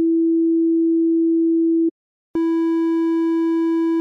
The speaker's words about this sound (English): Triangle waves have a fundamental frequency, but their shape introduces some harmonics to our sound. I'll play the sine wave again, followed by the triangle wave, and you can really hear the difference.